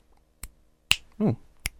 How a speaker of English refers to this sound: Why does yours sound better? Because I can snap my fingers. So can I. Yours sound better. Mine sounds more rubbery.